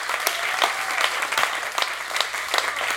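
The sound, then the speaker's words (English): An audience claps steadily for about three seconds, a dense, even patter of many hands with a few sharper claps popping out at moments. No one speaks over it. “I think someone needs to clap.”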